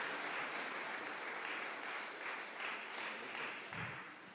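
A crowd applauds a family as they come up to the front, clapping steadily for several seconds, a dense, even wash of many hands with no voices over it, holding at a moderate level before tapering slightly at the end.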